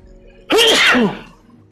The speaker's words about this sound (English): So, excuse me, I sneeze.